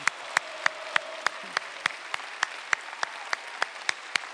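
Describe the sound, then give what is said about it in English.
An audience gives a standing ovation to honor mothers, with steady, evenly spaced claps, roughly three per second, in a sharp, moderately loud rhythm that holds for the whole stretch without any voices. “can we give all our moms a stand ovation, stand for them and honor them today?”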